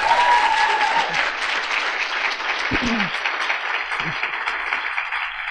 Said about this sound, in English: We will bring this podcast to a conclusion as the women and men in the room stand to applaud you, Marianne Williamson.